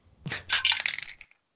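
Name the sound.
dice being rolled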